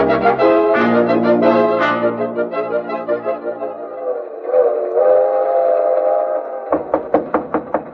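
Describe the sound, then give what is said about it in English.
A train rolls along the rails with a rhythmic clatter under a long, blaring whistle, followed near the end by a quick series of sharp knocks. No one speaks. “Oh, Smoke, how did you get on this train?”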